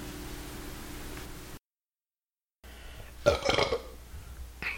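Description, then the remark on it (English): A woman lets out a single loud, guttural burp, preceded by steady background hiss and a brief stretch of dead silence. “Hey everybody, that was my girlfriend burping.”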